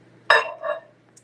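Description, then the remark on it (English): A short microwave sound: a sharp clunk with a bright ringing tail, quickly followed by a softer second knock, then a faint tick. No one speaks. “I heard a microwave sound.”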